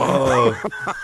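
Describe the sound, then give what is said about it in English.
A fairly loud voice imitates a turtle with a strained, warbling call that slides up and down, then breaks into a few short, grunting bursts. “Not the turtle sound”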